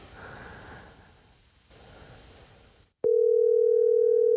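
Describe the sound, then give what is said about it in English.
A loud, steady electronic ringing tone of an outgoing phone call that goes unanswered and is forwarded, like a call ringing through an earpiece, starts abruptly and holds after a few seconds of soft breathy rustling noise. “Think he'll answer? Yeah, he'll probably answer.”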